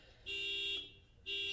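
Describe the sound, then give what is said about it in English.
A car alarm blares in repeated steady tones, a loud sustained electronic honk that cuts off briefly and then starts again, with no talking over it. “We have a car alarm going off.”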